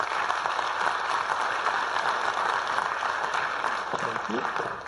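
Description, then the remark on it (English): An audience claps steadily for about five seconds as a woman is invited up to share her story of transformation, a dense, even wash of clapping that holds at a constant loudness throughout, with a faint voice surfacing briefly near the end. “Give her a round of applause as she comes.”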